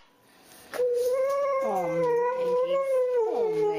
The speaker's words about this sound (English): I couldn't find a bark video, but I found a Sholo whining for food. That works. It's the only, like, I don't know, noise I could get a video of a Sholo making.